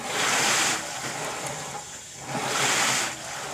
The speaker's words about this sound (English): And it's kind of zen, really, to use this rowing machine because it gives you the feel like you're actually out on the water rowing with the sound and with the feel. So I'm going to do this for about 5 or 10 minutes here.